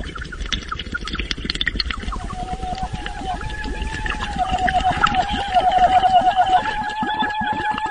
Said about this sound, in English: This clip is from the 2009 opera, You Who Will Emerge from the Flood. The voice that you're hearing in this is actually the underwater, mouth-to-water singing that we were discussing earlier.